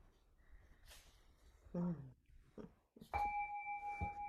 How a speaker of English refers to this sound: It's a little bell for that one.